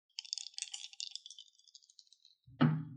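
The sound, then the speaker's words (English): Dice rattle and roll with a rapid, bright clicking for about two seconds, trailing off before ending in one louder, deeper thump as they come to rest, landing a natural 20. “Yeah, just give me a roll.”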